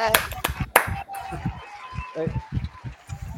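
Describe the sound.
A few sharp, scattered hand claps ring out at the start, then give way to voices cheering and chattering over fainter clapping, a round of applause for a podcaster called the Podfather.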